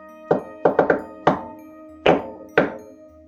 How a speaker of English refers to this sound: Really, I'm really going to slam on this door, really hammer. They're very callousy, yeah. In a polite way, though, make it like a jaunty tune, even though it's a heavy knock.